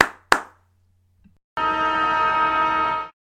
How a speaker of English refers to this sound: So there you go, folks. The siren has sounded in another episode of the Laces Out podcast.